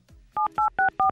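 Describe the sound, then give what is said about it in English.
Four quick, evenly spaced touch-tone beeps ring out clearly as a telephone number is dialed to call a number-one chart artist live on air on the Hit 30 on Good Hope radio show, each a short two-pitched electronic tone, preceded by a faint low rumble and no speech. “So we thought we'd phone him live on air.”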